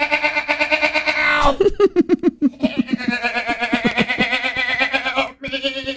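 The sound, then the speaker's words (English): A goat from a neighbouring goat farm cries out loudly for its lost baby goats in long, wavering bleats with a stuttering, pulsing middle section, the strained calls sounding eerily like a person yelling "help". “The officer did note that the cries did sound similar to someone yelling "help."”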